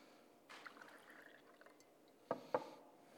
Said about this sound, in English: And then likewise, he would take the juice, the wine, and pour it out for the disciples.